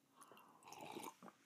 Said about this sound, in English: Excuse me, having a sip of my coffee. Hope that wasn't too up in the microphone there.